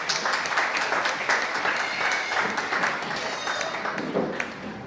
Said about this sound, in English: Well, thank you for showing us that, boys and girls. You've made the point very well. Give them a wee round of applause.